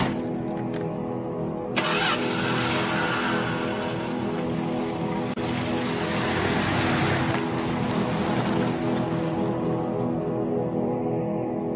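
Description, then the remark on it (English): A car engine turns over and catches, then revs up into a loud, steady roar that holds for several seconds before easing slightly, with no one talking; David Reimer's car, driven into a supermarket car park on May 4, 2004. “On May the 4th, 2004, 38-year-old David Reimer drove into a supermarket car park.”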